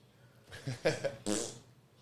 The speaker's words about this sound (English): Got another bar, and he'll just farting it up in the kitchen.